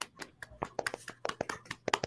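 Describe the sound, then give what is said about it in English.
A golf clap: a dozen or so soft, quick handclaps in a loose, uneven rhythm, polite and fairly quiet, lasting a couple of seconds. “Golf clap for Hollywood.”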